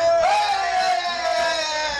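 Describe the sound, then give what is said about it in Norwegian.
A person in the background lets out a long, high-pitched excited yell about how fantastic it is, rising sharply at the start and then held steadily for about two seconds, loud with a crowd-like murmur underneath. “skriker I bakgrunnen, hvor fantastisk det Vi hører det”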